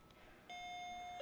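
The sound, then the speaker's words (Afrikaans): A school bell sounds as a steady, electronic-sounding tone that starts partway in and holds without a break, fairly quiet, with no one talking. “Right, dis die klok daai, is dit nogal vinnig gevlieg.”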